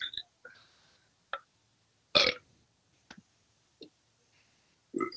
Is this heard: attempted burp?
yes